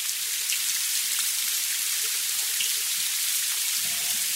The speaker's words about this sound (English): And just before we get ready to leave, we hear rain hitting the window pane.